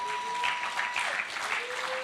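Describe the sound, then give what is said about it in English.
An audience claps hands together in a dense, steady burst of applause, sustained and fairly loud throughout, with no one speaking over it. “Come on, you ought to clap your hands on that right there.”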